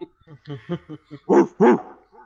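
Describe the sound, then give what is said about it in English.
A man imitates the bark of the wrestler Vader, with a quick string of short, gruff grunts building into two loud, drawn-out barks, then a faint trailing huff. “I loved it when he barked.”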